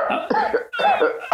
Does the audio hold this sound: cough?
yes